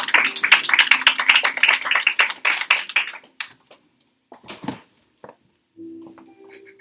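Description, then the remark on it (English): A crowd claps rapidly and loudly in praise to God for about three seconds, then the applause thins into scattered claps and fades, leaving a faint hum at the end. “Come on, let's give God a hand clap of praise all over the place.”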